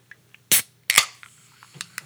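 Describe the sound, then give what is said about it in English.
A bottle of Q-tonic tonic water is cracked open with a sharp hissing pop, then a second burst of fizz gives way to quieter pouring and bubbling with a few small clicks. No one speaks. “I thought I would break out a tonic.”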